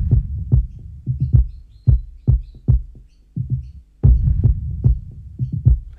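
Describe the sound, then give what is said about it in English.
Deep, booming kick drum hits repeat in an uneven rhythm, with reverb and a slight delay effect on the kicks, the delay on the higher-end kicks; each hit trails off with a reverb tail and faint delayed echoes that smear into the next strike. “If you can notice there, that's with the kick and the kick effects present. It's like there's a slight delay there. They've got reverb, they've got delay on the kicks, but the delay comes on the higher end kicks.”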